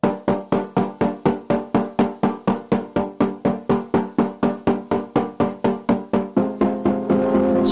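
A song's instrumental intro: short, punchy chords repeat in a steady, even pulse about three times a second, close and clear with no voices, before blending into a sustained, fuller sound at the end.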